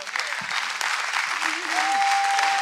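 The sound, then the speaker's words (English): An audience claps steadily during a sermon, a dense wash of many hands that swells slightly toward the end, with a sustained organ-like tone and a brief vocal slide underneath. “I'm going to preach it whether you clap or not, so you might as well get ready.”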